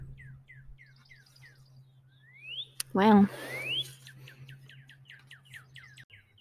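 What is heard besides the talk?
many birds chirping outdoors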